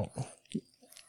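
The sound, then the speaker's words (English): A dog licks a person's nose, making three or four quick, wet smacking laps in about a second, fairly quiet with no talking. “This is the sound of her licking at my nose.”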